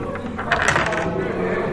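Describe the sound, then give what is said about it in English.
A short burst of two dice clattering and tumbling across a table for a psychology test roll, a quick series of rattling clicks over a low background murmur of voices. “So, psychology test. You'll be two dice. Two dice.”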